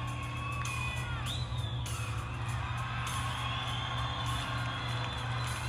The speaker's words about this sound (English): And the crowd's going excited.